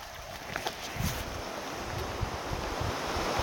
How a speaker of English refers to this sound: So I'm crossing this river. This one has ropes, but I looked about 50 feet upstream and I think I might be able to cross without getting my feet wet.